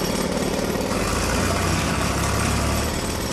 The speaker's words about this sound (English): I think the drill outside might have covered that over for our listeners